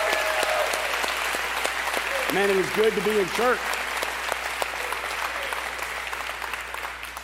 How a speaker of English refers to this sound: If you're at one of the correctional facilities, I want you all to give each other the biggest round of applause you possibly can. Every campus, we're going to just applaud everybody.